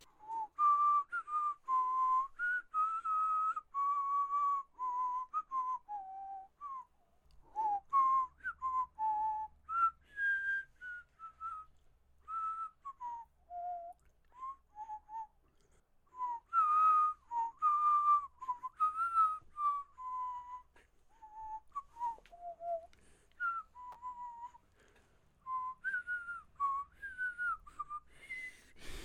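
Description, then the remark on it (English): A person whistles a meandering melody for about half a minute as intermission music, fairly loud, with short pauses between phrases and some breathy wobble in the pitch. No one talks. “Oh god, my lips are so dry from trying to whistle.”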